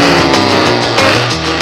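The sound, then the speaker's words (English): A loud diesel truck engine revs up as the gears are shifted, its droning pitch climbing and stepping between gears, with no voices over it. “Shift them gears, boy. Wrap that engine up. Here it goes.”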